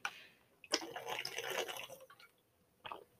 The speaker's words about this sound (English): Let me just get a quick swig of water.